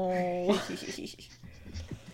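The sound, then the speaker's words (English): Scattered keyboard clacks tap out an uneven rhythm, following a brief steady hum, with a voice murmuring faintly underneath. “I'm going to make some more typing noises.”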